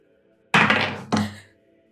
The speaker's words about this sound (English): Also, I need you to roll for damage. Roll a 1d8.